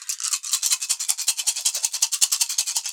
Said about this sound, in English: Alright, so now I gotta roll my dice.